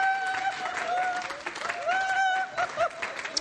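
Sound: audience applause and cheering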